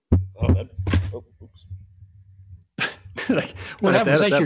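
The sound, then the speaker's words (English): A hand knocks against a microphone, almost knocking it over, producing a few sharp, heavy thumps and rattling bumps over a low rumble, followed by someone talking. “That was my hand hitting the mic.”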